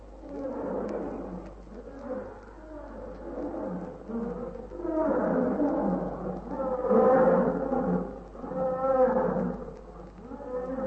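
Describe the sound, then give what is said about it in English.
Several lions roar together in long, deep, groaning bouts that overlap and swell, one call rising as others answer, building louder toward the middle and continuing without any talking. “One lion roar, that make others roar.”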